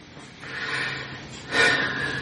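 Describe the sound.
Two heavy, exaggerated breaths, a long wheezy inhale followed by a louder, rushing exhale, as a voice imitates the labored breathing of an intubated patient.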